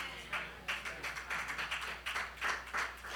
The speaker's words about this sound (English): I didn't get a hand clap in the first service. So I appreciate that. Amen. Listen, the truth of the matter is, and I wasn't looking for a hand clap anyway, but I appreciate the support.